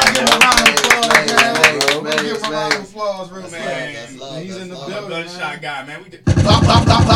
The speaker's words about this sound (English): We'll give him a round of applause, man. He's in the building.